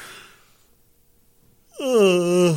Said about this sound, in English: Man, I don't know where that yawn came from.